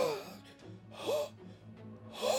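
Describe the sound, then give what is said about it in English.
Three strained, gasping breaths from a woman come at roughly even intervals, each a raspy, labored intake with a rising wheeze, fairly quiet with a low hum underneath. “She's still breathing, but it's labored.”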